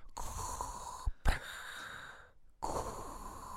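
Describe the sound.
A voice imitates Darth Vader's mechanical respirator's heavy, hissing breath: a long raspy exhale, a brief click-like catch, then another drawn-out breathy cycle after a short pause.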